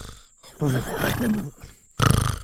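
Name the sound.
voice imitating loud snoring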